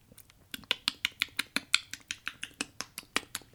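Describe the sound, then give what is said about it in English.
A voice imitates the clicking noise of the creature in the film Alien with a rapid, steady run of sharp mouth clicks, fairly loud, about twenty crisp ticks in quick succession with no speech. “It's like that clicking noise in Alien.”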